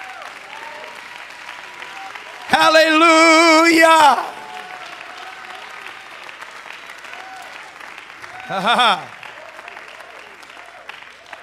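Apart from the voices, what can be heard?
audience clapping hands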